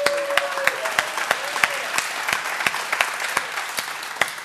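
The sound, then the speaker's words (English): An audience claps together in steady, dense applause for its members at the Ventura campus, many hands producing a continuous crackling wash with sharper individual claps standing out, sustained at moderate loudness for several seconds. “Let's applaud them.”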